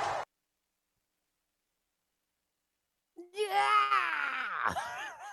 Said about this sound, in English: I don't think I could do that scream even if I tried. Like, it's just so unbelievable.